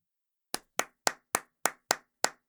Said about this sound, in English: No, please, don't do that, really. No, please don't do it. Just stop clapping.